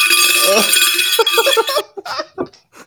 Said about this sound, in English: that's the bell, ladies and gentlemen.